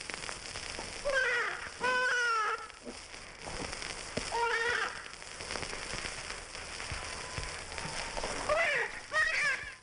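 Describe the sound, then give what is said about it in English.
Actual shrill, wavering squeals of a half-grown cottontail rabbit come in short bursts of two or three cries at a time, separated by pauses, over a steady background hiss. “And now listen. Half-grown cottontail rabbit.”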